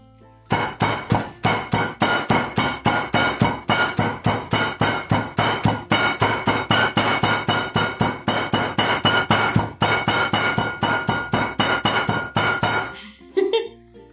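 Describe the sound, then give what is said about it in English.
A hammer pounds coffee beans wrapped in a towel to grind them, dozens of quick, evenly spaced muffled thuds in a steady rapid rhythm, fairly loud, stopping abruptly near the end. “You better be pretty desperate if you're using the hammer method to grind your coffee beans.”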